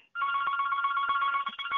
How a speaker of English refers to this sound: I got this phone ringing. They didn't call back.